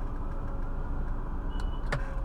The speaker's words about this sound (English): Sorry, I'm driving, so someone's just cut in front of me. He's not really a dick, but you know, you get annoyed.